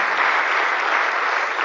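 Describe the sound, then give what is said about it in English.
Sustained applause from a church audience clapping for the Lord, a dense, even wash of many hands clapping together, loud and steady throughout with no voices standing out. “Oh, let's clap for the Lord and thank him for what he has done.”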